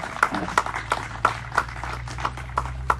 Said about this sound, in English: Thank you, guys. Big round of applause for Phil and Peggy.